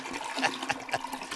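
A toilet flushing with a steady, rushing gurgle of water, moderately loud, running continuously through the short moment with no voices.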